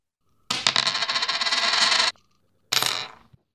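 A penny is flipped, spinning and rattling on a hard surface for about a second and a half, then after a brief pause it rings again and settles to a stop; fairly loud, no voices.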